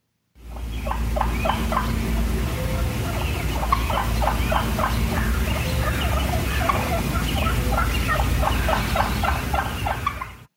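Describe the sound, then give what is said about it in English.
A wild turkey gives a steady series of short, sharp clucks, a sound of contentment, repeating for about ten seconds, moderately loud, over a constant low outdoor rumble, with no talking. “So that's what they call a cluck, and that's just a sound of contentment.”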